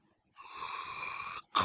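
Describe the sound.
A voice imitates a huge creature's heavy breathing: one long, raspy, wheezing exhale held for about a second, followed by the start of another loud breath.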